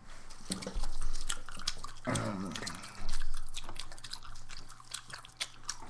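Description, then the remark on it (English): Wet, squishy gum chewing with smacking and clicking mouth sounds in an irregular rhythm, loud, with a brief murmur of voice partway through. “Now we're going to make chewing noises. This is the chewing noises portion of the program.”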